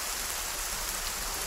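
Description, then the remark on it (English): Steady late-summer rain falls on the arid Sonoran Desert with a continuous, even hiss, blending into the broad rush of water running through once-dusty gullies; no voices, just an unbroken wash of sound. “Rainfall rejuvenates the arid land. Grass grows lush. Wildflowers spring forth. Gullies once dusty now rush with water.”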